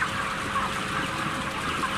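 A dense chorus of broiler chickens clucking and chattering continuously in a full poultry shed, many birds at once, steady and fairly loud with no pauses.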